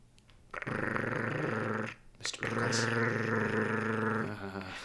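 A dog, Mr. Pickles, growls low and steadily in two long, rumbling stretches separated by a brief pause, fairly loud, with no talking.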